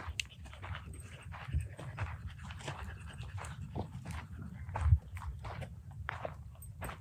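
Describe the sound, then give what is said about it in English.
A puppy with some hikers pants rapidly in the morning with a few soft whimpers, the quick breaths running steadily throughout alongside low rustling and movement, with no talking. “Hi, puppy.”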